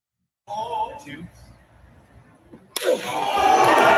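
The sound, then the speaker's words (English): A voice talks briefly, then one sharp, hard open-hand slap to the face, delivered with a squatting motion, cracks out loud, followed at once by a swelling wash of crowd noise. “He's incorporated the squat into his slap.”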